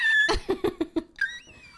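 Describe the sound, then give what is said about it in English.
A chair creaks as it shifts: a thin, high squeak, then a quick run of five dry cracks, followed by another rising, wavering squeak. No one speaks. “I can't stop moving my chair, and my chair's going.”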